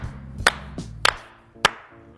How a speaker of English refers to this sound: And we're going to slow clap y'all in, G.